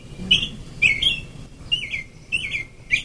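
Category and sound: bird, american robin song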